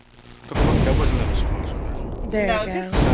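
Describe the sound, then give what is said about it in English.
A voice imitates explosions with a dense, sustained burst of harsh, noisy blasts that sound more like rapid gunfire, loud, with a brief voiced tone near the end. “You want explosions too? Explosions.”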